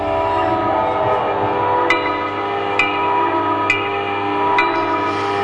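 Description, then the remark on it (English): A loud 10-minute warning whistle blows steadily for several seconds without a break, while faint, evenly spaced clicks tick along underneath about once a second. “There's the 10-minute warning whistle, after which the area is cleared of guests.”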